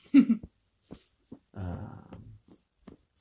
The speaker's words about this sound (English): So, it's about as significant as this fucking dog whining at the door.